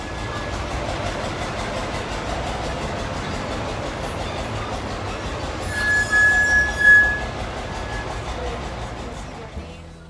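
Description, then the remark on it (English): A heritage railway train on a 3-kilometre round trip starting at St. Nicholas Abbey rumbles steadily along the tracks with constant low-end clatter, and a brief high metallic wheel squeal rises midway before fading back into the running noise. “The round trip ride started at St. Nicholas Abbey. We'll cover 3 kilometers and last for approximately 45 minutes.”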